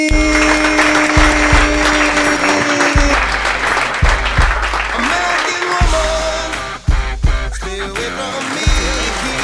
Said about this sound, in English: You can hear, but there's claps right now happening on the...